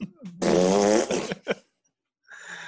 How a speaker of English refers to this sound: Abbott, cue the thumbs down, fart noise in post.